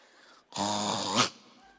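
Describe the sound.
A person imitates a single loud, throaty snore of someone who snores with reflux, a rough gurgling rasp lasting under a second that swells to a sharp choking snort before cutting off.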